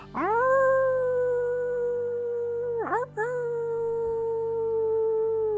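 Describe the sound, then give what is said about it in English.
Several people standing together in a circle howl in imitation of wolves, a long sustained rising wail that dips briefly and resumes, loud, with layered harmonics from the voices howling together. “Howling a few more times together now, nice and loud.”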